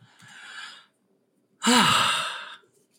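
Two snoring breaths close by: a soft, airy one first, then a louder, rougher inhale with a low rattling rumble, followed by quiet. Nobody speaks.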